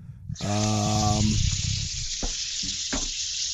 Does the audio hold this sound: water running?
yes